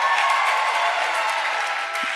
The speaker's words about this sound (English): Before you sit down, can we welcome all of our brothers and sisters that are watching this on Pando, all of our social global family. Come on, don't stop clapping.